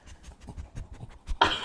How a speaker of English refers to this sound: She's sniffing the microphone for you. Oh, my goodness. Enjoy that. Little Franny sniff.